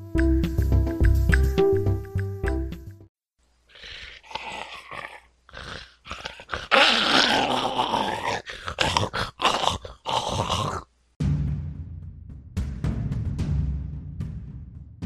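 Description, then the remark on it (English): A dog growls and snarls in rough, uneven bursts, loud, after a short tonal passage at the start. There is no talking. “Maybe someone's dog attacked someone else that was running, Cosmo commented.”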